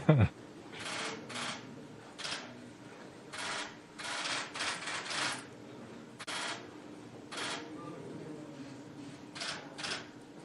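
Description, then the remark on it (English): Camera shutters click repeatedly in irregular bursts, about a dozen sharp snaps, some in quick pairs, over a low, muffled background hum. “I think that was the shutter of a camera.”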